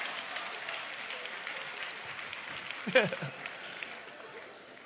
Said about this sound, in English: Come on, y'all, give me a hand clap for that one. Come on now.